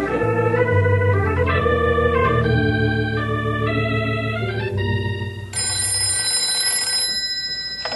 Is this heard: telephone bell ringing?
yes